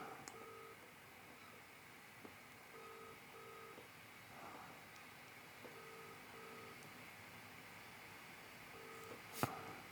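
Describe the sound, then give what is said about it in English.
A phone's ringback tone repeats its double-ring pattern about four times, fairly quiet over a low background hiss. Nobody answers, and a sharp click sounds near the end. “I knew he wouldn't pick up because he's not picking up his text.”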